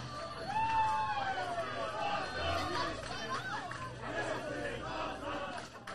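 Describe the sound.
A large crowd at a Kingdom of Wrestling main event, the Workhorse Championship match, roars and chatters continuously, with excited shouts rising above a dense wash of overlapping voices that stays loud throughout.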